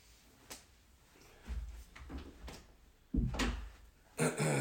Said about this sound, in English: Let me close my door really quick.